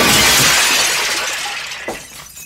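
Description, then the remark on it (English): Glass model ships smash in a loud, bright crash as Picard smashes a phaser into them, followed by a spray of tinkling shards that fades away, with one last small clink of falling glass near the end. “just starts screaming and waving a phaser cannon around, and then he smashes it into the ships behind him, like rambling on about the line and where it must be drawn.”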